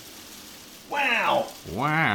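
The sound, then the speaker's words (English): Hail patters steadily against a window in spring, a continuous dense hiss of tiny impacts, while a voice exclaims twice over the top of it. “It is hailing. It's definitely hailing.”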